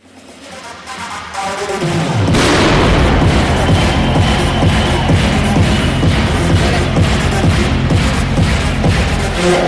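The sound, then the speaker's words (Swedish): A sudden, loud pyrotechnic bang bursts out as the Örebro hockey team comes onto the ice, followed by a dense, sustained roar with repeated booming pulses that stays loud to the end. “Alltså den smällen när Örebro kommer in på isen.”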